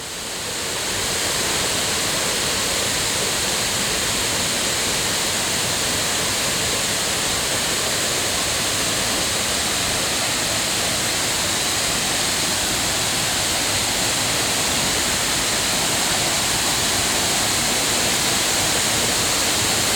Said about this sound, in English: And so it'll be interesting to see if we can hear any difference in the acoustic tone of the waterfall. So here we go, Dry Falls near Highlands, North Carolina, September 4th, 2018. We will begin outside of the falls at 10:54 a.m.